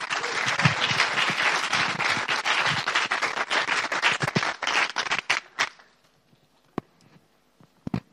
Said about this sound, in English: I'm sure Grace will be equally fantastic, so keep clapping and welcome Grace.